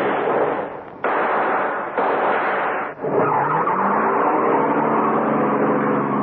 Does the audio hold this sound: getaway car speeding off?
yes